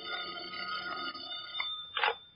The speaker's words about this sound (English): Until about 1 o'clock in the morning when the telephone started having hysterics on my night table.